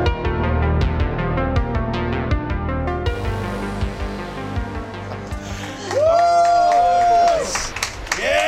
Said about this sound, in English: Force clap for my show. That's what I like.